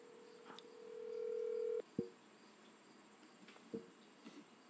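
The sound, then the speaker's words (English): A phone call being placed: a steady electronic tone swells for nearly two seconds, then cuts off, followed by two short, separated beeps against faint background hiss. No one speaks. “Did you call him? Yeah, I'm calling him.”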